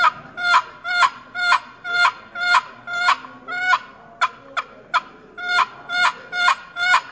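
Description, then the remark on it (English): A turkey hen yelp produced on a box call: a steady run of about fourteen raspy, two-toned notes, with a few shorter clipped ones midway, loud and alone with no talking. “And the yelp.”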